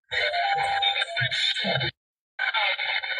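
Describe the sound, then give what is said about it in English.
Loud, hissy radio static carries a run of bright electronic beeps in a quick da-da-da pattern, like a video game jingle, then cuts out briefly before the buzzing tone resumes. “You hear the static in the background, but you'll hear like a da-da-da, and it almost sounds yeah, like...”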